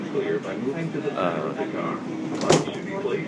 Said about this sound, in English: The beeping you heard was the door just kept opening and closing. There's no one there.